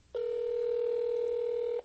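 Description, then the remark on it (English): A single steady telephone keypad tone, an unbroken mid-pitched electronic beep holding at even loudness for nearly two seconds before cutting off cleanly, with no voices. “So I'll just beep it and then put the speaker on. I think this is a landline.”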